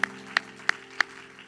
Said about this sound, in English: Y'all remember that? Does anybody remember that? Clap your hands if you remember that. I want to know if you remember.